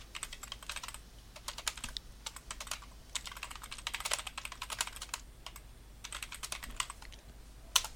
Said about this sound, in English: That's a lot of typing.